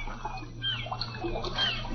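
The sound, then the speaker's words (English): Choppy water slaps and sloshes steadily against the side of a small fishing rowboat far out on a bay on a bright sunny morning, a continuous splashing over a low rumbling background, with no one speaking. “It was late one bright sunny morning, and far out on the bay in a rowboat that was being rocked by the choppy water,”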